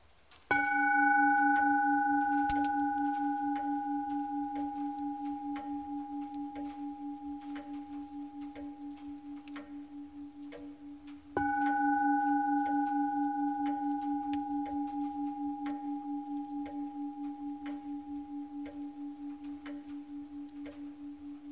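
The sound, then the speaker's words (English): A meditation bell is struck twice, about eleven seconds apart. Each strike sends out a rich, low, shimmering tone with a gentle wavering pulse, ringing on and slowly fading, with no voices. “Even after the bell.”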